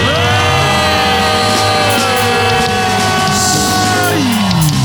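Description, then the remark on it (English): An audience screams and shouts in praise, many voices merging into a loud, sustained roar that fills the whole stretch without letting up. “Somebody scream and bless God.”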